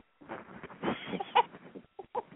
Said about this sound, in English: Well, every time you get on the phone, your bird wakes up and he's been over here laughing.